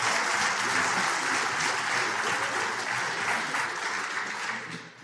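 Sustained audience applause thanking a participant, a dense wash of many hands clapping at steady loudness for several seconds before beginning to taper off at the end.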